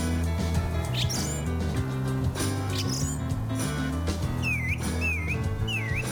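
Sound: thrush singing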